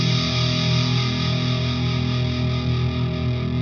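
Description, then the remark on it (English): A sustained, heavily distorted electric guitar tone from an effects unit drones steadily and loudly, thick with gritty harmonics and fuzz, holding without a break and with no voices over it. “Let's turn the distortion down.”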